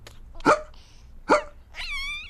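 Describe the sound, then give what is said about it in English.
A voice imitates hiccups: two short, sharp 'hic' sounds spaced about a second apart, then a brief, higher-pitched wavering vocal squeak at the end. “Now Papa has hiccups.”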